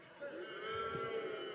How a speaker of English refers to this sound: And then he says to Haman, I'm saying it a lot, maybe we stop the booing for this bit.